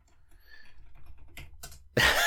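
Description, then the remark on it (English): Keys clatter on a computer keyboard, soft scattered taps at first, then a few sharper clicks before a louder, denser burst of typing at the end. “Ignore my typing?”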